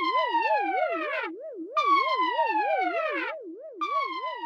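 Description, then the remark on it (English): A loud alarm siren warbles rapidly up and down without pause, while a second, higher tone sweeps downward in repeated blasts about every two seconds. No voices are heard. “Sound the alarm!”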